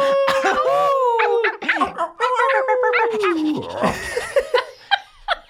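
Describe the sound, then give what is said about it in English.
Several people loudly imitate dogs, overlapping woofs, yelps and drawn-out howls, mixed with bursts of laughter, continuing for several seconds. “Everyone bark, you got to.”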